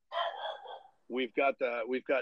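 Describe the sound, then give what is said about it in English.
A dog named Atlas barks on the other side of the house in a quick run of about five short, sharp, tonal barks, evenly spaced, following a brief stretch of softer, muffled sound at the start. “We've got Atlas barking in the ground background. He's literally on the other side of the house.”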